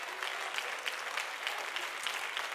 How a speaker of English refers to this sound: And if you believe the Lord's going to just do a mighty work in us, just clap your hands one more time and give the Lord some praise. Hallelujah.